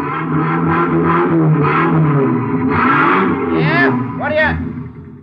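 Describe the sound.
A loud, steady engine rumble fills the busy Haynes U Drive truck rental garage with clattering and whirring, then the motor revs upward twice in quick rising sweeps near the end, with muffled voices underneath.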